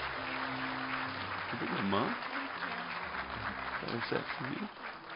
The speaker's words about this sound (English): Can you let these families know by your applause that we're going to be standing with them?